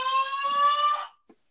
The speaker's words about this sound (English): oh, that's a fire alarm test. Interesting. Anyway, yeah, we might hear a random fire alarm during this